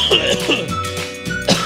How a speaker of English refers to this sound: I started coughing. I took a hit. I thought I was good, and I guess I'm not. It snuck up on me.